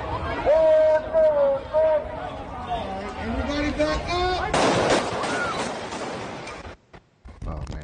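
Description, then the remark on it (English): A crowd of marchers chants and calls along a street, then a burst of four loud gunshots cuts in, followed by noisy commotion and movement as the camera runs away from the scene, before things briefly fall quiet. “Gunshots, and then the camera kind of runs away from the scene where the shots were fired. Yeah. Four shots.”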